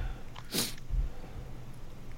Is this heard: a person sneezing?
yes